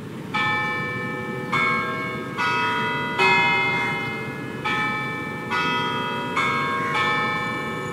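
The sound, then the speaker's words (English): The clock tower bells of the Victoria Theatre and Concert Hall chime a steady sequence of about eight loud, resonant strikes, each tone ringing on and overlapping the next as it slowly fades. No one speaks. “Here is the Victoria Theatre and Concert Hall, postcode 179556.”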